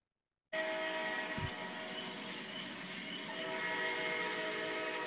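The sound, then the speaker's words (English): An express train rushing past, a loud, steady roar layered with high whining metallic tones that starts abruptly and holds for several seconds, with a brief thump early on. “That's that mixing train that we rode yesterday, boy.”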